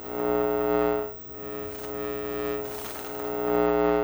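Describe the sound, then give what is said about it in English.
A steady, droning hum rich in stacked harmonics comes from inside an object about 25 feet away. It holds for several seconds, swelling and dipping slightly in loudness with a faint breathy hiss, sounding mechanical, with no voices. “It's a curious humming sound that seems to come from inside the object.”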